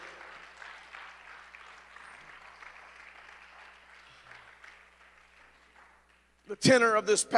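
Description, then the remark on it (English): An audience claps in a dense, sustained wave of applause that slowly tapers off, then a loud voice abruptly starts speaking over the final moments. The clapping is a hand clap of praise to the Lord during a sermon. “If you believe what I'm saying, come on, give the Lord a hand clap of praise today.”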